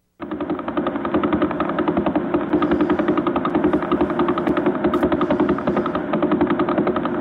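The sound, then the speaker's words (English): A rapid, steady train of pulses, dense and machine-like, thumping continuously like a helicopter rotor or gunfire: the Vela Pulsar's radio signal rendered as sound. “It's not a helicopter. It's the Vela Pulsar.”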